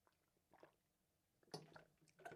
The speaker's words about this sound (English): Let me actually drink some water.